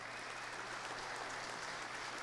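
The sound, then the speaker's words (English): Steady, dense applause from an audience, an even wash of many hands clapping with no pauses and no voices standing out. “Big round of applause.”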